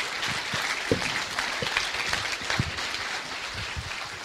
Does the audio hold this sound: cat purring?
no